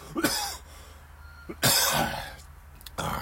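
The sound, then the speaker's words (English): A person coughs after inhaling a mosquito, in several harsh bursts: a sharp pair near the start, a longer raspy cough in the middle, and a final burst, with brief pauses between and no talking. “You see, oh, I got a cough. Hold on.”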